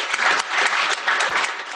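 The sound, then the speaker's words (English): An audience breaks into a round of applause for a company's product and engineering teams, a dense, steady wash of many hands clapping at once, fairly loud and sustained across the short stretch with no voices standing out. “So yeah, can we get a round of applause for that and for product and engineering?”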